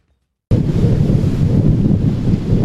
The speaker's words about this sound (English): Wind. Rain. And fire are the soundtrack of Australia's climate crisis.